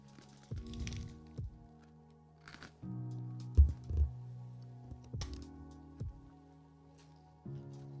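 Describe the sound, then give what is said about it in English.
Crunchy bites and chewing on a brittle freeze-dried snack, with sharp crackling bursts in uneven clusters over a steady low hum. No one speaks. “It's actually like a crunchy or like, you know, brittle.”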